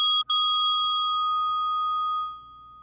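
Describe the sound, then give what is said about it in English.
A single clear bell chime, struck twice in quick succession, then ringing out with a long, steady metallic tone that slowly fades. Fairly loud, with no talking. “Let's start with the sound of the bell.”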